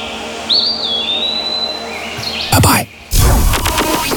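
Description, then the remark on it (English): A bird chirps with a clear, high, sliding whistle-like call, followed by softer tweets, before louder rushing, noisy bursts take over near the end. “Look, it's birds.”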